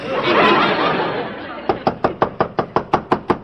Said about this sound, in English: Only one person in an apartment house has got the nerve to knock like that, the landlady.